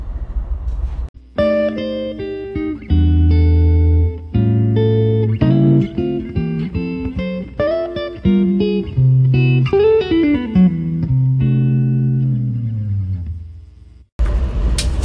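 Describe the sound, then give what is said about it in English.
A train rolls by about 20 feet away near a river, very loud, its low rumble overlaid with shifting, shrieking metallic tones for about thirteen seconds before it cuts off abruptly. No one speaks. “So this is really loud because we're literally about 20 feet from a train, but we've maneuvered our bodies over here right near the river to see the landscape that has now been made so inaccessible.”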